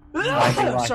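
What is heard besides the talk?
sneeze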